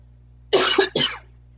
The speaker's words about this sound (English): Sorry, I'm coughing. I just ate lasagna, so.